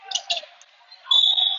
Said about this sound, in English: Now, hold on. I heard a whistle. Foul against 22 on Bardstown. Second team foul.